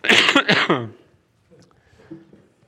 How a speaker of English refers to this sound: I'm going to cough again.